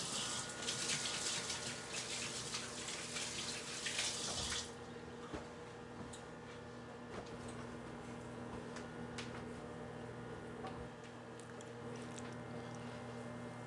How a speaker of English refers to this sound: All right, I'm gonna wash my hands.